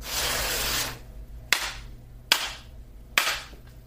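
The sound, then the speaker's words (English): A deck of cards is shuffled: a dense, papery riffle lasting almost a second, followed by three crisp, evenly spaced slaps as the cards are squared up. No voices are heard. “I'm shuffling the deck.”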